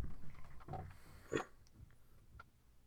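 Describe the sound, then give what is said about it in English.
A cat vocalizes with a few soft, low, throaty sounds and one short, sharper cry in the middle, fairly faint overall and with no one talking. “Oh, is that a podcasting cat I hear? It is.”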